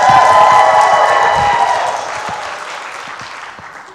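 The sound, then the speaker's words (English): A church audience bursts into loud cheering, screaming and applause at the news that their pastor returns tomorrow, a dense wash of voices and clapping that stays strong for a couple of seconds before gradually fading down. “And I'm gonna need you to, you know, scream out like, you know, you happy about it.”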